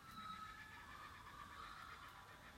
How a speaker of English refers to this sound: Do they sound to you like they're establishing their territory? Listen to those crazy kookaburras. I don't get they're establishing territory.